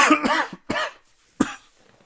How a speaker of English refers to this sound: You try to suppress a cough, but it doesn't work. It just comes anyway.